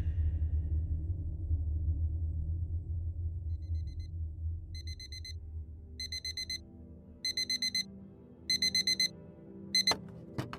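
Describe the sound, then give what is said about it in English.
An alarm clock rings at the crack of dawn in a rectory in Baltimore on a cold, rainy morning, beeping in repeated clusters of quick electronic tones, the bursts growing longer and louder, starting faintly over a low rumble that gradually fades away. “I sprang out of bed as the alarm rang at the crack of dawn.”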